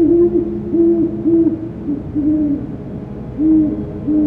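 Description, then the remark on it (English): A great horned owl, recorded by an automated recording unit, hoots in a low, soft, steady series of about six or seven deep notes, with a short pause midway, and no voices. “In October this year, I've spent a few nights out around dusk in an area I know great horned owls frequent”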